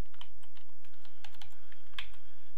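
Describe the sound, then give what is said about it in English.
Quick, irregular clicks of keys being pressed on a computer keyboard while typing the words "man bites dog" into a text box, moderately loud, with a brief cluster of sharper taps near the end and no voices. “Let me zoom back in, out and start typing.”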